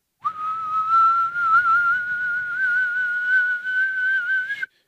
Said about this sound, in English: Then you get that tea kettle going, and then by the time she hits the door, that thing's going.